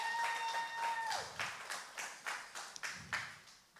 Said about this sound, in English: Thank you so much, worship team, band. Amazing. Can we just give a hand, a round of applause for them?